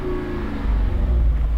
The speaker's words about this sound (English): Let's talk about this 392 because it's pretty wild. Just did the exhaust for you. don't know if you guys can hear that.